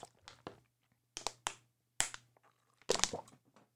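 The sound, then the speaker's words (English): Someone taking a drink of water: a series of short, crisp gulping and swallowing clicks in irregular bursts, with a faint steady hum underneath and no talking. “Like what I'm going to do right now is I'm taking a drink of water”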